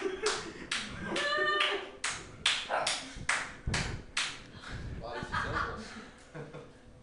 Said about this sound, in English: Dogs are barking.